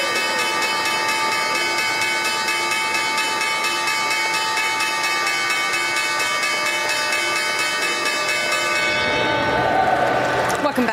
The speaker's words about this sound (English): That was the opening bell here at the New York Stock Exchange.